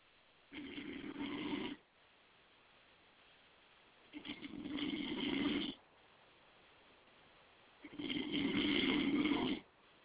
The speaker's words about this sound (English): Hello? Am I getting a snore on? That's probably what that was.